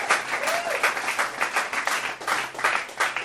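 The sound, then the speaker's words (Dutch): An audience applauds steadily, a dense crackle of many hands clapping at once, fairly loud and sustained throughout with small swells in intensity and no one speaking over it. “That's really worthy of an applause.”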